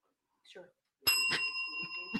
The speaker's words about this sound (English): Did you want to hit the bell?